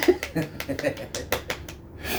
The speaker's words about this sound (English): Round of applause. And we got the clap, and we're giving it to you, bud. Golf clap.